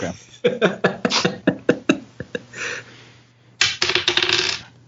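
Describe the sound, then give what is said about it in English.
A die clatters across a hard tabletop in a quick series of sharp clicks that slow and thin out, followed by a second short burst of rattling, the roll landing on a one. No one speaks. “Another good roll. Is a one.”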